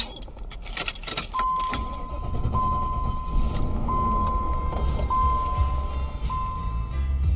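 Keys jangle for a moment as someone settles into a silver hearse, then a steady low engine hum takes over, with a few soft electronic chime tones repeating. No one speaks.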